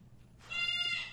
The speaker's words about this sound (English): Even the bird in the background heard that.